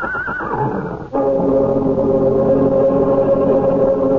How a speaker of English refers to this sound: to the huge horse, his ears flat against his skull, his eyes rolling wildly at the farmer.